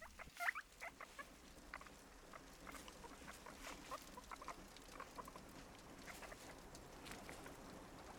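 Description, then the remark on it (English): Guinea pigs scurry and scrabble around their hutch with a steady, busy patter of scratchy footsteps, broken by a few short, high squeals near the start. The sounds are moderately quiet. “And just as you collapse onto your bed, you hear the sounds of your guinea pigs squealing and racing around their hutch.”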